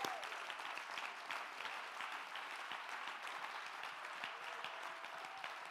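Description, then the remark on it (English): An audience claps their hands together in praise of God, a dense, steady wash of applause that holds at an even level for several seconds, with no voices standing out. “Oh, let's clap our hands and give him praise.”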